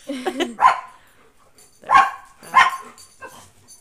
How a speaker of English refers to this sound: If you guys hear my dogs, I'm really sorry.